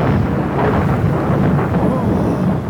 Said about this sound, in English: And then, of course, we've got thunder. Thunder. Or, of course, you have to have the windswept Scottish moors. Can add a little bit of thunder to that.